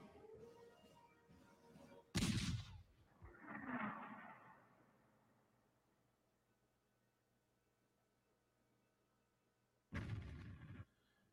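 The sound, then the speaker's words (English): A heavy nuclear artillery cannon with a nuclear payload fires with a sudden loud blast, followed by a rolling explosion rumble that fades into a low, quiet hum before a second loud boom near the end. No one speaks. “This is a cannon that is, it's called the Grable, and it has a nuclear payload inside of it.”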